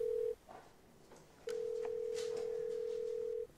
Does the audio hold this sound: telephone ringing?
yes